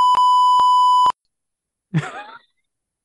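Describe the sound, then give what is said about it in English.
A steady, loud electronic censor bleep tone from a beep button, lasting about a second with brief breaks, followed by a short vocal sound like a groan or sigh. “I had to use the beep button for the first time in a while, but that's okay.”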